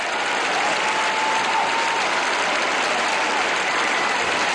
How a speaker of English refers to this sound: This video is totally electrifying to watch. The clapping went on for 3 minutes straight before Jordan could speak.